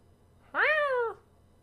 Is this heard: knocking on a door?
no